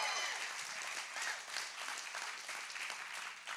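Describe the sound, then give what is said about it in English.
An audience at Four Points Church breaks into steady applause for their pastor, dense overlapping hand claps filling the whole stretch at a fairly even level with a faint murmur of voices underneath. “will you just give a shout or a hand clap, a smile, something?”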